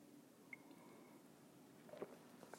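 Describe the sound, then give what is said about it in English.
A quiet sip of coffee from a mug: a soft slurp of liquid near the end, preceded by a faint light clink, with no talking. “Fill it with your favorite liquid. I like coffee.”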